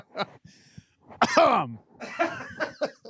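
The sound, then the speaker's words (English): Several harsh coughs in a loose cluster, one louder raspy hack in the middle with a throaty tail, then a few quicker coughs trailing off. No talking. “Got to do something about that cough, man.”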